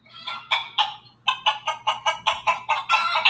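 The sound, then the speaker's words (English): A chicken clucks in a quick, rhythmic series of sharp calls, a few spaced notes and then a faster run, fairly loud with no one talking. “What about chickens?”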